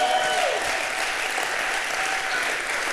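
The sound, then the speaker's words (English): An audience, standing on their feet, claps steadily as a clap offering to God: a dense, continuous wash of many hands applauding together, loud and sustained for the whole stretch with no talking over it. “If you are here, just stand on your feet and give God a clap offering.”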